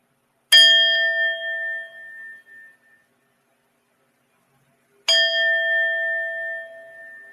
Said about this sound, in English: So I'm going to shuffle these cards because actually, let me ding the bell.